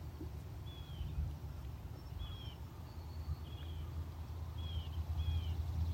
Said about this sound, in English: There's gentle ripples on the water, subtle sounds of water meeting rock.